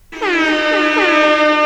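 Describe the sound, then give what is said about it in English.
A loud, sustained air horn buzzer, played as a radio show's buzzer-beater cue, blares for nearly two seconds, a rich stack of harsh, slightly wavering tones held steady at full volume with no talking over it. “can we do our buzzer beater and go ahead?”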